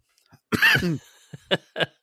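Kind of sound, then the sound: human body sound, cough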